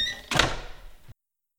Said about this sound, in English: Come, shut the door.